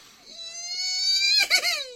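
A person lets out a long, high-pitched excited squeal that holds and climbs slightly in pitch, then breaks into a short breathy, wavering burst at the end.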